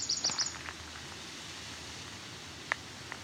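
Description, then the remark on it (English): A warbler gives a quick, high-pitched trill of rapid repeated notes at the start, then fades to soft outdoor hiss with one or two faint isolated chips later. “I don't know how best to describe it, but the trill has a little more activity going on.”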